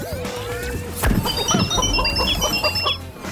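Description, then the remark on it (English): A loud robotic chicken clucking effect as the character Mighty Mila turns into a giant robotic chicken during a dance-off: a sudden thump followed by a rapid string of buzzy, metallic, electronic clucks and chirps over a steady synthetic drone. “Mighty Mila turned into a giant robotic chicken!”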